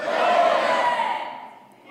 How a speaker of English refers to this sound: Count of three, I want you to, everybody scream their name. Can you guys do that for me? I saw some kids in here. You guys are going to scream loud, I know.